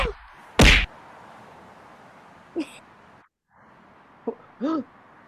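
Several punches land in irregular succession: a loud, close thwack first, then softer thuds a couple of seconds apart, one followed by a brief groan-like tone, over a faint steady hiss.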